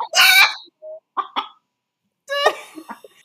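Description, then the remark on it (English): A hen confined in a box squawks and clucks in short, harsh bursts with brief pauses between, fairly loud, sounding agitated and slightly boxy. “Just chicken box.”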